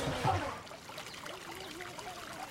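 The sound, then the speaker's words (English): Water trickles and dribbles steadily through a shallow open sewer channel in a village, used as the communal bathroom: a soft continuous flow with faint babbling, without any talking. “These water channels are also open sewers.”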